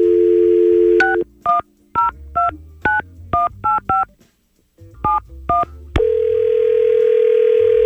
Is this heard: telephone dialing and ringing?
yes